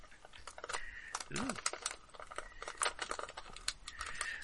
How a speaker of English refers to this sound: Well, it's got a pretty thick skin, as aforementioned, but I'll roll all these dice and see.